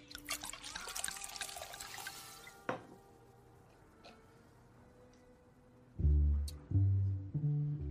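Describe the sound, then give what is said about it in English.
Water splashes into a glass in a short pour lasting a couple of seconds, watering down a strong drink, then a few faint drips follow before louder low thuds near the end. No one speaks. “We water it down.”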